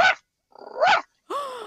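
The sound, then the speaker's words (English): A person imitates a small dog's yappy barks with sharp inhaled yips, three quick bursts with short gaps between them, moderately loud with a breathy, squeaky edge. “But you want to do that backwards by breathing in. And you're going to do it really quickly at the same time trying to make a barking sound.”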